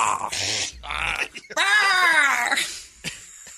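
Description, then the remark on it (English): A person imitates a pelican call with a few short raspy, breathy bursts, then a loud, drawn-out nasal wail that rises and falls, ending with a brief grunt. “What sound does a pelican make?”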